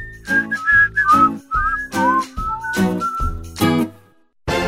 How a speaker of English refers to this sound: Whistling is fun!And some people use it to talk. It can be a language.